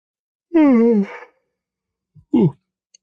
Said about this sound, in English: Sorry, I had a yawn come out there.